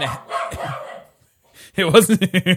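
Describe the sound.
A person talks briefly, then after a short pause a dog lets out a quick, rhythmic burst of about five sharp, loud barks.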